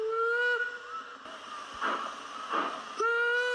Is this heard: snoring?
no